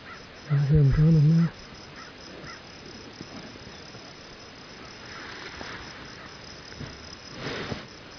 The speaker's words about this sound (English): That bird up there on the hill, I think, is a Jake. Got a big gobble on him, though, doesn't he?